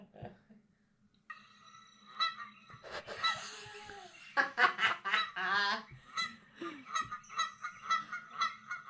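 A goose honks loudly and repeatedly, nasal calls coming in irregular bursts that settle into a steady rhythm near the end, over a low background hum with no one talking.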